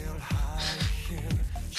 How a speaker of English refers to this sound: And the breathing. Exercising. Ugh, this breathing.